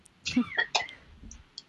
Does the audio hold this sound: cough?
yes